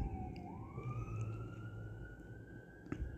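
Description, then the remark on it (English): A fire truck siren wails as the truck goes by, its tone climbing slowly and holding high over a low traffic rumble, with no one speaking. “There are sirens blaring in the background. There's a fire truck going by.”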